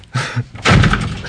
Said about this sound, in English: He's angry today. Sorry for slamming the door, shit.